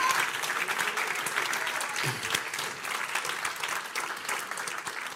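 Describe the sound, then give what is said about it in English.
An audience claps steadily to thank God for the passing of bill SB 14, a dense wash of many hands sustained for about five seconds at even loudness, with faint voices mixed underneath. “Can we just clap to God and thank God it happened?”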